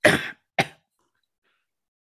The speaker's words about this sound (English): Sorry, was that real cough then? No.